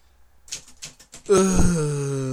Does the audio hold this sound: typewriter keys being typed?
yes